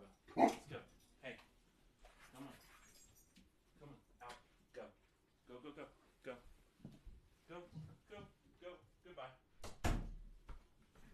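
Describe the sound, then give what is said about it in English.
Dogs, one named Marva, bark in a few sharp, loud bursts at the start and near the end as they are shooed out, while a person talks through most of the scene. “And I have dogs barking here.”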